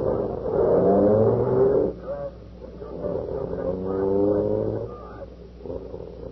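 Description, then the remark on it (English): A police car engine revs loudly and steadily, its pitch rising and falling through a couple of surges as the car pulls away to drive to the station house, with no one speaking. “Boy, this is the first time I ever rode in a police car.”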